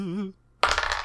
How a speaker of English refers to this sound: That's a swords roll. Cool. Roll high. Oh dear. I've only got one dice to roll as well.